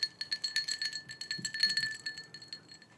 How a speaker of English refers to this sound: Keys.